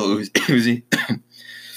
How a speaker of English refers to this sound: Sorry, guys, I have a little bit of a cough. I don't think it's corona, but let me get a drink of water real quick.